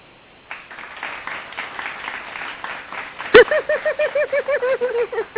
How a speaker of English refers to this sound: All right, we got a new sound effect. The fact that you're writing something is worthy of a couple of applause. So there you go.